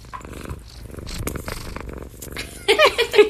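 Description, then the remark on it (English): A cat purrs in a steady, rumbling rhythm, with a few louder, brighter bursts near the end. No one speaks. “I don't know if y'all can hear these motor purrs.”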